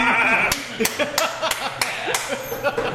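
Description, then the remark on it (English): A run of about six sharp hand claps in a fairly steady rhythm, crisp and loud, with voices and bleat-like vocal sounds murmuring underneath. “That's my appreciation clap.”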